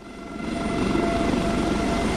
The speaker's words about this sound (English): Baldonnel Tower, Air Corps Rescue Helicopter Alpha 195 requesting liftoff. Alpha 195, you're clear to lift.